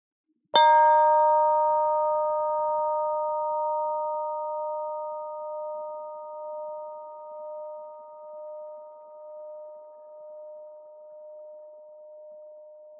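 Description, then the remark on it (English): A single chime is struck once, ringing a bright, clear tone that sustains and slowly fades over many seconds, with a gentle wavering pulse as it decays. No voices. “You may want to close your eyes so that you can really hear the chime sound until it's totally gone.”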